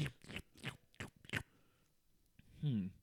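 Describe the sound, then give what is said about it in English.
Crunchy biting and chewing of a snack, four or five crisp bursts in quick rhythm, then a pause and a brief voiced murmur at the end. “Now pop that bad boy into your mouth.”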